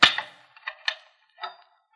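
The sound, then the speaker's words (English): A heavy metal clang rings out, followed by a few sharp metallic clicks and rattles as a jail cell door is unlocked with keys and swung open. No voices. “I've got the keys. I'll open the cell door.”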